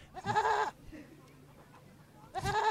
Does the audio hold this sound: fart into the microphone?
no